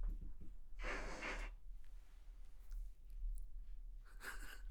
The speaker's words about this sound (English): That sounded like someone farted.